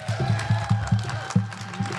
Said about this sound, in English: We give him a round of applause, please.